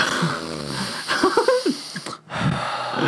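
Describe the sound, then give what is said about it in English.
Loud, forceful sniffing through the nose at the smell of a fart, a run of rough snorting inhales with short noisy bursts, a brief pause near the end, then another sniff. No one speaks. “Oh, God, you're really sniffing that one.”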